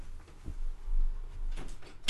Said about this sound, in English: Hold on. I gotta close the door. I'll be right back.